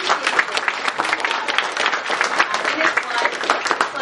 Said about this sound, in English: Can we just give him a round of applause?